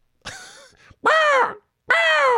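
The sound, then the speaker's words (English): A seagull sound effect: three loud seagull cries in quick succession, a ragged first squawk, then two long, strident calls with a rising-then-falling pitch, separated by short silences. No voices are heard. “Wait, is that a seagull sound effect?”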